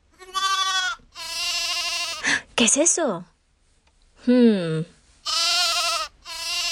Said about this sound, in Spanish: ¿Qué adivinaron? ¡Sí, una ovejita! Las ovejitas son tan suaves y tiernas.